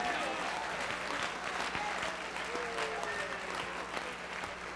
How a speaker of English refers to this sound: Clap your hands, ladies and gentlemen.